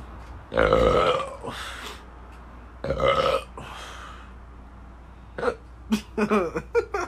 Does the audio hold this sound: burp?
yes